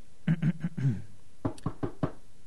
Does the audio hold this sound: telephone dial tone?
no